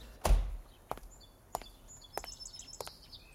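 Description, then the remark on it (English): Five footsteps climb the steps of a mansion at a steady, unhurried pace, the first landing heaviest, with small birds chirping faintly outdoors in the background. “We got out and headed up the steps.”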